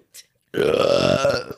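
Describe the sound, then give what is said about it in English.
A single loud, drawn-out burp into the microphone, lasting about a second with a rough, buzzing tone, preceded by a brief faint breath or hiss. “That sounds painful. Burp.”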